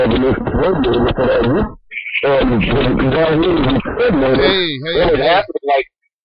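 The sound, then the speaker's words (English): A voice talks through heavy distortion, sounding crushed, muffled and clipped, loud and continuous for several seconds with one short pause midway. “Yeah, you're distorting pretty bad.”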